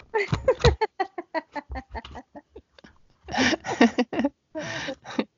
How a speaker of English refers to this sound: So if you hear the pages kind of clicking back and forth, that's what we're doing. Okay. This is a book ASMR. You guys want to hear the book? Yes. Hear that?